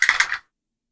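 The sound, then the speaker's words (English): Dice clatter across a hard tabletop in a quick burst of bright, rattling clicks, about four impacts over less than half a second, then silence. No one speaks. “So, 26. That'll hit. And so many dice now.”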